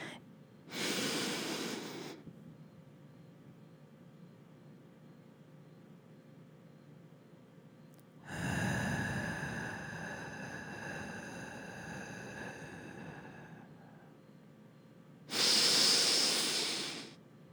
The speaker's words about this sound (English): When we do our deep breathing exercises, we always breathe in for 4 seconds, hold it for 7, and exhale for 8.